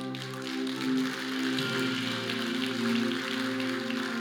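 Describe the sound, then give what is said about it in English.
A crowd claps continuously, a dense crackling patter of many hands, over sustained low musical chords that shift partway through. “Come on, clap.”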